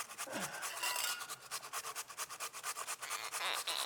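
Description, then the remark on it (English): Food being rubbed over a shredder in quick, rhythmic rasping strokes, a steady series of scratchy scrapes with no voices. “Suffice to say, knuckles on a shredder.”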